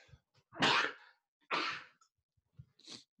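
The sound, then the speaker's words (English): A loud, close sneeze bursts out, followed by a second sharp sneeze-like burst and then a quick, hissy sniffle, all recorded very near the microphone with no talking. “Sorry, I just sneezed and then sniffled right into the mic.”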